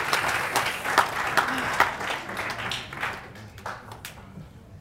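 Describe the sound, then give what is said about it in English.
An audience applauds journalist and author Evan Narcisse at a youth forum with dense, crackling clapping that holds steady for a few seconds, then thins out and fades toward the end. “Round of applause for Mr. Narcisse.”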